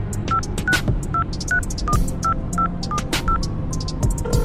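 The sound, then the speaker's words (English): An old-fashioned flip phone being dialed: a rapid series of short electronic keypad beeps, about a dozen distinct tones pressed in quick succession, each with its own pitch, clear over a faint background rumble, no talking. “Charlie is going to pull out an old-fashioned flip phone, and she's gonna dial it.”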